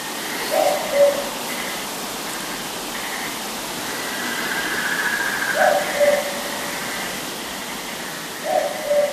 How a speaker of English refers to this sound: Well, I think it's a boobook owl. I think it's a boobook owl. Are we in agreement on this one?